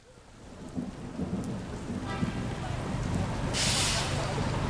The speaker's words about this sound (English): It's another rainy day in New York City. Another rainy day in what's been a very wet year.